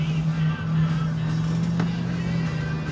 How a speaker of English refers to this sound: Oh, that's a car.